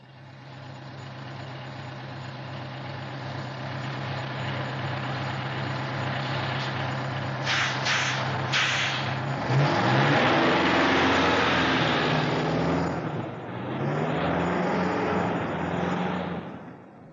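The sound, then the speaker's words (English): During a bus ride, a bus engine drones steadily at idle, then revs up with rising and falling pitch, with a few short hissing bursts around the middle and no voices. “Boy, doesn't that bus ride get you after a long day at the office?”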